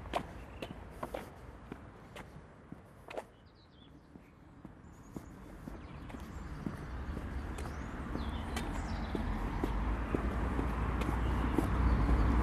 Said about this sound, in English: Now you hear the traffic start to pick up in a moment, or now even.